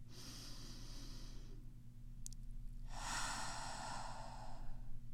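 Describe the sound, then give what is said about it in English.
Slow, deep breathing exercise: a long airy inhale, a brief pause, then a fuller, louder exhale, with a steady low hum underneath and no talking. “Deep breathing gives you energy, calms your mind, and focuses you.”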